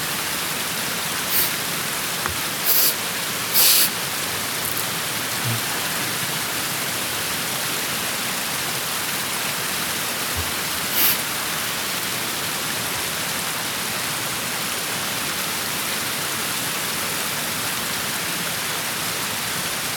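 The Sacony Creek flows and babbles steadily for the whole stretch, a dense, even rush of water with a few brief splashy ticks near the start and around the middle. No voices.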